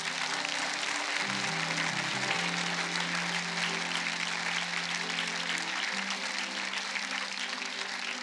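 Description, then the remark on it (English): A large crowd applauds steadily for several seconds, a dense wash of clapping hands with a sustained organ or keyboard chord droning softly underneath. “Can we just clap for those who had faith to”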